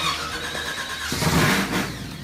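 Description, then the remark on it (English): A race car engine cranks and fires up, then revs hard with a loud, rising roar before settling into a rough, throaty idle, with no one talking. “Kick it in the guts”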